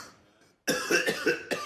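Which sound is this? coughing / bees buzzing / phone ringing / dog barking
coughing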